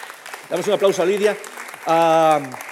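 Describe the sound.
An audience claps steadily, with voices calling out over it and one long, sustained cheer rising above the applause near the end.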